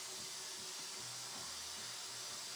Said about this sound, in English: Static. That's what it sounded like at the end of the Patriots and Bills game, by the way.